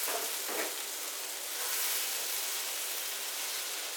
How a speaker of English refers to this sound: And there we are. You can hear that. I know you can hear that. You can hear that sizzle in my pan.